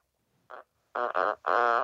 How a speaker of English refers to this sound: But also, I have a walkie-talkie app, and I send sounds of my farts to my friends.